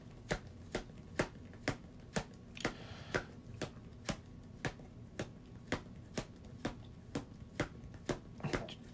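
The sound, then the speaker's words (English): A deck of cards being shuffled, with sharp, steady slaps of cards landing roughly twice a second for several seconds, fairly quiet, with no talking. “Going to make a quick shuffle.”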